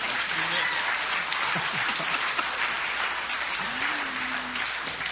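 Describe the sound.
A steady wash of audience applause, many hands clapping densely and evenly for about five seconds, with a few faint voices calling out underneath.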